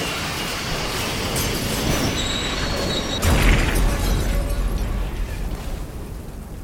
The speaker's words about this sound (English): Lightning strikes outside, accompanied by the never-ending roar of thunder and the crashing of steel and flesh and blood.